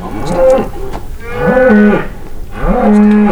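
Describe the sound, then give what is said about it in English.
Cattle mooing in long, drawn-out calls, about three overlapping bellows from more than one animal, loud, with no talking, on a cattle ranch at the base of the mountains in Bighorn County, Wyoming. “The cattle ranch they run sits at the base of the mountains, with a mix of lush green hay meadows and rugged rocky terrain.”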